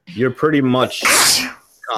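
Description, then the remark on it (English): A single sharp, loud sneeze bursts out in the middle of a man's speech, with talking resuming right after. “Bless you.”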